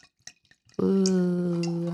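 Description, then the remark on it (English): Napa Cellars 2016 Sauvignon Blanc, not chilled, poured into a glass: a few faint taps and clinks, then a loud, steady stream of liquid with a ringing, tonal gurgle as the glass fills. “So, hey, here's the pour.”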